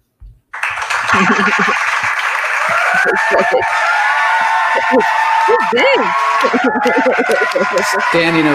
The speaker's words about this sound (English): Standing ovation. Everybody in the room is clapping for you.